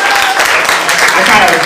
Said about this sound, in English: I kind of played y'all that one night. Made you clap for me. That was not the intention.